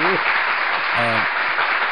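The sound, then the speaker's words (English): A canned burst of applause: dense, steady clapping that holds at an even loudness throughout, with a couple of short whooping cheers rising out of the crowd. “You get applause?”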